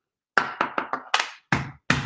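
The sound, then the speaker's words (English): Seven loud, hard thumps pounded on a counter: four come in quick succession, then three more land after short pauses, each a sharp knock with a brief ringing decay, no voices. “I'm stomping the counter.”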